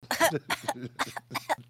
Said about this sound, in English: Hi, I'm sick. Squawk, cough, cough.